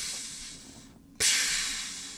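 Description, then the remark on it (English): Steady steam hissing from a brass egg, briefly cutting out near the middle before a sudden, louder burst of hiss that holds strong and slowly tapers. No voices. “But there's steam coming out of it.”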